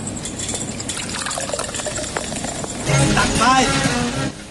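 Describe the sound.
Steady sloshing and rushing of water as Kin's boat moves through it toward the shore in gloomy light, a continuous wash that swells louder near the end, with a brief voice rising over it.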